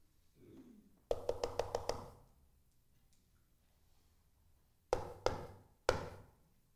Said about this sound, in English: He keeps knocking and he keeps knocking. And he doesn't give up.